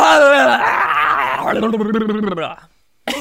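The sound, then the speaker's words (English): A person lets out a loud, strained mock scream lasting about two and a half seconds, its pitch wavering and rasping like a roar, then a brief silence before another sound starts. “I have a funny bit to add in about the lady when you were like, can I get an impression of like me screaming in into her?”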